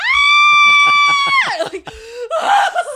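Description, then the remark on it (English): A voice lets out a loud, high-pitched, sustained squeal imitating a bat screaming as it is about to be cut into and eaten, holding steady for over a second before sliding down into a strained, warbling cry. “If something screamed when I ate it.”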